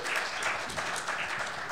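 Steady audience applause welcoming a guest to the stage: a dense wash of many hands clapping at an even loudness for under two seconds, with no clear individual claps standing out.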